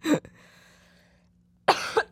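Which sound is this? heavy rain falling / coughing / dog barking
coughing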